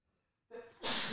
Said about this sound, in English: Bless you. Like that quick switch to sneeze into the mic.